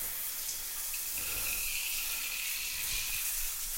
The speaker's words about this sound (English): excuse me, just a little water, do not panic, I am not showering, I am merely cleaning the shower.